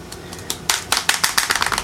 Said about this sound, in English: It's me banging the styrofoam thingy. It's fun to wave around. I mean, I'm not angry and, you know, banging things about making a racket. I'm just swirling this. Having fun, swirling the baby noodle baby pool noodle around.